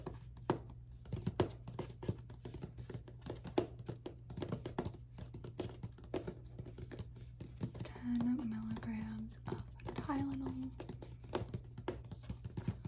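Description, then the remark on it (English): Soft clicking of fingers typing up a prescription on a computer keyboard in quick irregular bursts, with a faint breathy voice murmuring and humming briefly near the end. “Okay, just type up a prescription here on my keyboard.”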